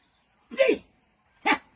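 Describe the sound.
A man's voice makes two loud dog-like barks, one short rough yelp followed by a brief pause and a second sharper bark, with no other talking, imitating how a man who cannot speak words talks.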